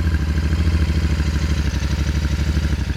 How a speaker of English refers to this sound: Oh, come on, boy. Easiest bike in the world to ride. Captain Donald started the motorcycle.